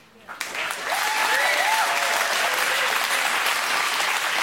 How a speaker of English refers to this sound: I feel blessed because some of you are learning how to clap.